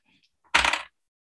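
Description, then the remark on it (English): A short, sharp clatter of two dice tumbling across a hard table during a tabletop role-playing game, landing on a 1 and a 10, a quick burst of overlapping clicks lasting under half a second, fairly loud, then silence. “Ooh, rolled a 1 and a 10.”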